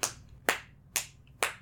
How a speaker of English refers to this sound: Yeah, we just clap and can make a nice little song.